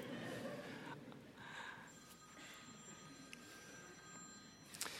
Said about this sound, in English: Somebody answer the phone, please.